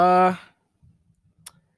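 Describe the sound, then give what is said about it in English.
A brief voiced sound fades out, then after a near-silent pause comes a single sharp computer mouse click, clicked nervously at a frozen computer, with faint low rustling around it. “After making multiple attempts of clicking nervously, it's still frozen.”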